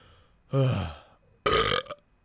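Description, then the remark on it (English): Two loud burps into a microphone in quick succession, the first a drawn-out throaty rumble and the second shorter and rougher, with brief quiet between them and no talking. “I'm sorry for burping in the mic two times now in this podcast.”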